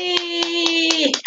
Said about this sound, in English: Yay, clap for me!